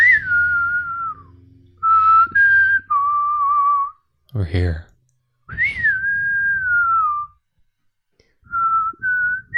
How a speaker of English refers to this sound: Can you whistle for me? What are you trying to whistle? The good, the bad, and the ugly thing?